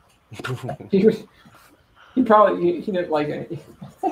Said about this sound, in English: Hey, Bark, yeah. Bark. Podcast dog. What's up, man?